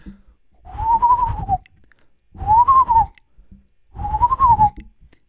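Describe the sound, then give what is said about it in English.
A person imitates the breathy, hollow whistle made by blowing into the back side of a small object resembling the back end of a bar of soap, three times, each a steady blown tone of about a second with short pauses between, fairly loud with no talking. “And when I blew on it, it made this cool whistle sound on the back side of it.”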